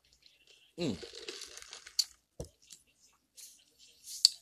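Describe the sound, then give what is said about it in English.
A wet slurp as someone takes a sip of a drink, followed by soft swallowing, lip smacks and a few small clicks. “Take a little sip of my drink here.”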